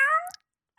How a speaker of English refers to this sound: It's a very weird cat sound.